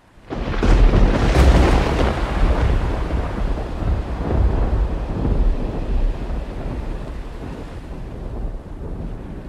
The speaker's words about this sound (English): The sky darkened, and driving rain, accompanied by lightning and thunder that arced down from the shadowy gloom overhead, threatened to sink us with sheer weight of water.